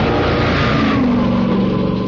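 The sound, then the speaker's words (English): An Alfa Romeo Berlina sports sedan engine revs steadily, its loud mid-range growl rising in pitch, with no voices over it. “The Alfa Romeo Berlina. Now the family man can drive a legend instead of just a car”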